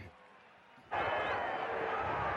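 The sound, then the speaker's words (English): A big stadium crowd of thousands of Sooner fans at a night football game erupts into a loud, sustained cheer about a second in, rising abruptly from a low murmur into a dense roar that holds steady to the end. “Did you hear that cheer there, folks? That's the thousands upon thousands of Sooner fans that are here tonight.”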